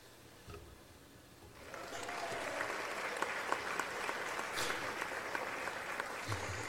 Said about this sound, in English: Yay! I did it! That's the award ceremony clap.